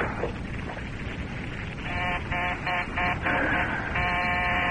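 A telephone rings with a buzzy, pulsing electronic tone that starts after a moment of hiss and repeats in quick bursts, fairly loud over a steady background of noise.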